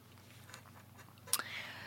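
Quiet chewing with soft mouth noises, then a sharp crunchy bite near the end followed by more muffled chewing. Nobody speaks.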